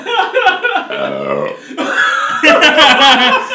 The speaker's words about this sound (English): You guys still like it when I burp in your pussy like that?